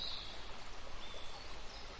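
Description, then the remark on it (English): Steady rushing water from a creek fills the background, with a few thin, high bird chirps breaking through near the start and again midway. No one speaks. “The sound of birds singing, water rushing in a creek, plants, animals, and other creatures you might not see in everyday life?”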